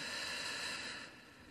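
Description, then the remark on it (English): Heavy, airy breathing of a person on a Comedy Central TV broadcast as I Can't Breathe appears on the screen: a long rushing exhale that fades, then a sharp new breath drawn in at the end, with no voices. “And the sound of a person breathing heavily.”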